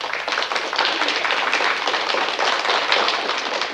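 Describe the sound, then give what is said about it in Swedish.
An applause sound effect: many hands clapping in a dense, steady patter, bright and fairly loud throughout, with no voices over it. “Alltså, jag vill lägga in en applåd här. Då gör vi det. Ja, här är den.”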